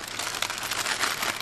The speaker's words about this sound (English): So you're going to fold it in. And then literally either use the paper or the tea towel to actually just roll it up. Right, I'll try with the tea towel.